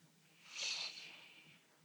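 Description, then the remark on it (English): A single slow, deep breath drawn in through the nose during a guided breathing exercise with feet on the ground. It is a soft airy hiss that swells quickly, peaks, then fades gradually over about a second, with no talking. “So we breathe in.”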